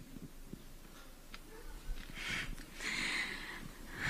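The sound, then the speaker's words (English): A woman breathes uneasily into a microphone, unable to bring herself to answer a question, with soft breathy bursts and faint puffs of air, no words spoken, gradually growing a little louder. “So the question's asked, and you hear the awkward breathing into the microphone where she can't really bring herself to answer the question.”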